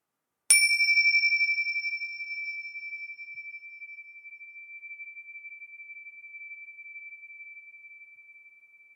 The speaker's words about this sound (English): Beautiful, isn't it? Tinksha bells. If that doesn't get you present, I don't know what will. I love these and I highly recommend them from time to time, particularly before a meditation.